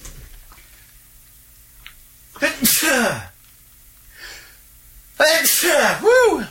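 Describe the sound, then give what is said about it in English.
Two loud sneezes a few seconds apart, each a sharp burst with a strained, voiced edge, separated by quiet breathing and a faint intake of air. “I got to sneeze, guys.”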